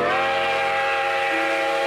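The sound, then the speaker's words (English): A steam train whistle blows in one long, sustained, loud chord of layered tones that holds steady without a break, with no voices. “The Erie Railroad came in 1841.”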